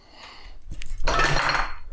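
A light bulb thrown up onto a table lands with a sharp knock, then a bright, glassy clatter and rattle lasting about a second, fairly loud.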